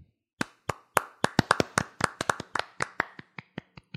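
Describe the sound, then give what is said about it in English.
A brief round of hand clapping celebrating that baseball player Moose finally got paid, roughly twenty sharp, crisp claps in an uneven, quickening rhythm that softens toward the end, with no talking. “I think we deserve early claps that Moose finally got paid.”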